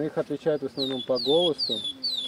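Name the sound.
birdsong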